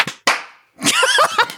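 Two sharp hand claps land a moment apart, ragged rather than in unison, each ringing briefly before fading; after a short pause, voices start talking and laughing.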